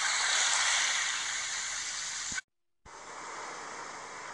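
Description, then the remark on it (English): Loud water splashing and rushing in a steady, hissing wash with no voices, cutting out to brief silence midway before the spray resumes just as strongly. “Stop splashing on me, dog.”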